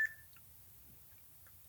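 A sharp electronic timer beep sounds right at the start, followed by a couple of much fainter blips against a low background hum; no one speaks.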